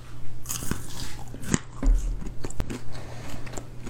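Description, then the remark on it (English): Crunching on roasted grasshoppers: a run of dry, brittle crackles and snaps from steady chewing, with a few sharper crunches standing out, over a low steady hum and no talking. “All right, so I'm gonna do the crunching for all you guys at home.”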